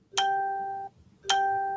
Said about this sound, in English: Yeah, I'm getting a lot of notifications right at the moment. I wish that I would stop. Sorry for anybody hearing that.